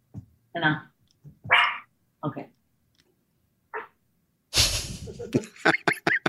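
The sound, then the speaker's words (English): A dog barks at a package delivery in short, separated bursts, pausing between them, then breaks into a louder, rapid flurry of barks at the end. No one speaks. “There's a package coming. My dog will not stop.”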